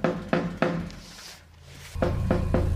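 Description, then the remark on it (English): Two sets of three firm knocks on a door, spaced by a short pause, fairly loud with a low hum underneath and no one speaking; from a scene with David Tennant's Doctor, in which Wolf knocks on the door in the control room. “And then it pans over to Wolf in the control room and he's knocking on the door.”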